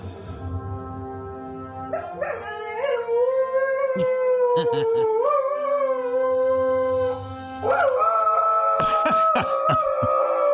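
A dog howls along to the theme from Star Trek in long, rising and falling tones over the melodic music, its voice sliding between pitches as if singing along, with a few short sharp yelps near the end.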